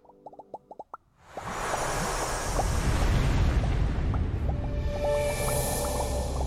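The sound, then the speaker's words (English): Bubble sound effects from a mixed reality keynote: a quick burst of about seven bubbly pops in the first second, then a loud rushing, surf-like wash swells up and continues, with scattered small pops and bloops sprinkled over it. No one speaks. “So listen for all the bubbles.”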